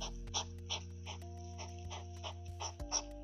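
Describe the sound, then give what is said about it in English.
A hedgehog grunts and snuffles in a quick, steady rhythm of short bursts, roughly three per second, over a constant low electrical hum, with no one speaking. “Let's go on to, alright, here's a grunting sound”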